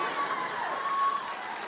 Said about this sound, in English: You see how many married people clap right there?